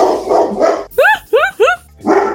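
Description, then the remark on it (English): Three sharp, high-pitched dog barks in quick succession, loud, framed by a man's voice speaking before and after. “being upset at his dog. Shut up!”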